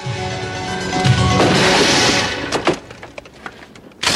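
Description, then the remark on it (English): A Texas Ranger racks a shotgun in a film scene: a loud, noisy rush gives way to a pair of sharp metallic clacks, followed by scattered small clicks and one final hard snap. “By the way, I love when he racks the shotgun on him. Have a listen.”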